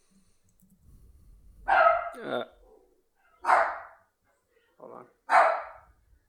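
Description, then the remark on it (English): Several sharp dog barks ring out, three or four loud bursts spaced a second or so apart, with a brief spoken phrase near the start. “Nice dogs.”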